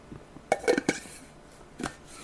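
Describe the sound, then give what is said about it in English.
A few quiet clinks and knocks of a ceramic mug being handled, with soft slurping as pumpkin-flavored coffee is sipped, then a final short clatter as the mug is set down. No talking. “Allow me to get a sip of coffee here.”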